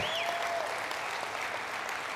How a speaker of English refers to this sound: Come on, give the Lord a hand clap this morning. That's good stuff.